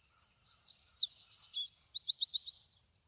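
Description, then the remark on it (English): A cuckoo calls alone and clear: a few high, unhurried notes that quicken into a rapid run of short, evenly spaced notes, ending low and soft. “Uttered at first high and leisurely, but running very rapidly toward the close, which is low and soft.”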